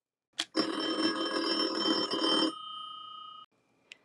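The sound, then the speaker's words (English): A loud telephone bell rings in one sustained two-second burst for an incoming listener call to a talk show, trails off into a fading metallic tone, then a small click follows as if the receiver is picked up. “So grab your phones and call 1-800-TALK-MONEY.”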